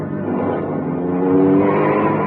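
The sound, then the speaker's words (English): A car engine roars steadily and climbs in pitch as it accelerates hard in pursuit of a fleeing man, a continuous rising drone with harmonic whine, loud throughout with no voices. “Turn right at the next corner.”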